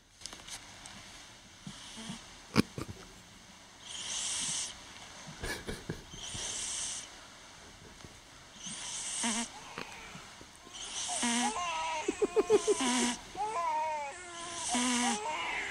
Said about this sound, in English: I like to record my cat snoring, so this is what you get over at no my house.